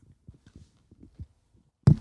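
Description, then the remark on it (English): A handful of soft, low thumps and bumps, then a single loud, sharp knock as cups clink together against the microphone in a New Year's toast for 2024. No one speaks. “A little mic cheers.”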